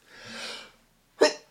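sneeze

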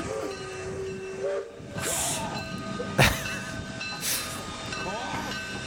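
train sound effect

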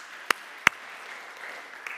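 church audience clapping

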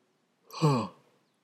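yawning

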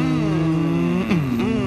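race car engine revving

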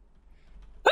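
sneeze

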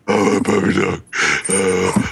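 dog grunting and growling

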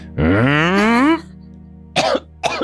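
coughing

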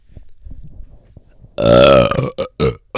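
burp

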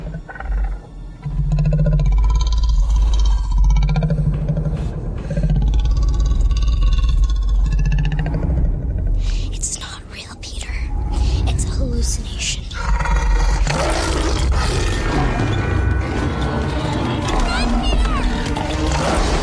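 lion growling and roaring

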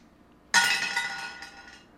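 dice being rolled

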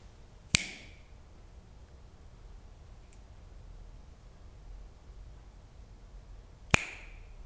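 finger snap

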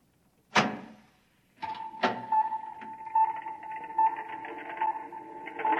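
door being opened

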